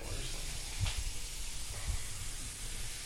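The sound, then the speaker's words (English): A steady hissing, fizzy wash of liquid runs throughout as beverages, including water, are poured into a glass, with a couple of soft low thumps along the way. “So I'm going to be pouring some beverages here.”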